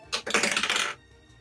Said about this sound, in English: I forgot I had my dice. So I'm going to use my actual dice.